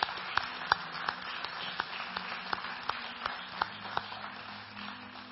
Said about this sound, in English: Would you give him a clap offering? Thank you.